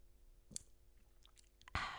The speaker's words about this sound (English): Slurp it up.